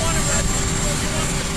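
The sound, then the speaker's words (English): A loud, steady roar of the nearby Marine One presidential helicopter's engine and rotor on the South Lawn fills the moment, with a constant high whine on top and faint, indistinct voices buried in the din, as the President addresses the media over it. “on the South Lawn, surrounded by microphones on long boom poles, shouting to be heard over his nearby helicopter.”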